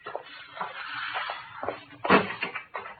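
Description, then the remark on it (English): A street door is worked open: a series of rattling clunks and scrapes, with a heavier knock partway through, then more handling noise. No one speaks. “You go out first, Pop, and open the street door.”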